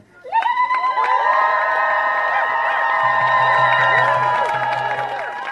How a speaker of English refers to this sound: I'll give another round of applause